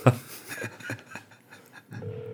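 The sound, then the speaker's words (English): A phone line's ringing tone starts near the end: a steady, moderately loud electronic hum, as heard through a call connection. Before it come brief clicks and line noise. “Oh, wait, it's ringing.”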